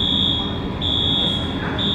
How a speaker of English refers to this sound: Store alarms were still going off throughout the morning.